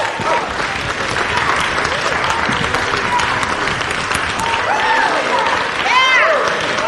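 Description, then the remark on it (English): An audience breaks into sustained applause, a dense, steady wash of clapping at an even loudness throughout, with scattered cheers and vocal whoops rising through it. “Give him a big clap off.”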